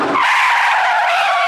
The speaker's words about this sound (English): Meg barges out the front door, followed by the sounds of a car's wheels screeching to a stop.